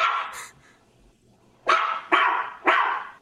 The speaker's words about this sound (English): Play the dog sound. Just test out. Okay.